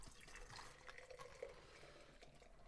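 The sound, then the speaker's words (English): Brown beer pours steadily into a glass for a few seconds, forming a big head, a continuous splashing and gurgling of liquid with faint fizzing, no voices over it. “I'm going in for the pour.”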